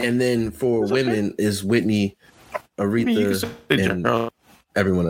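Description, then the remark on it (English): A man's voice over a remote call cuts in and out, with the speech briefly dropping to near silence a couple of times before resuming mid-sentence. “You said what? You were breaking up a bit.”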